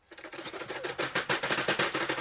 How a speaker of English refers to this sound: Hey, the crew also has a gift for you. How about this? Uh-oh. I hear ticking.